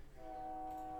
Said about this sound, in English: The train sounds better.